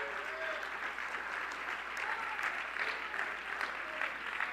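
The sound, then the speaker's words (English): An audience claps their hands to God one morning in a steady, dense wash of applause lasting several seconds, with faint murmuring voices underneath. “Come on, why don't you clap your hands to Him this morning?”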